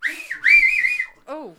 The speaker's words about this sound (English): And I've got the 2 fingers in mouth whistle down to like the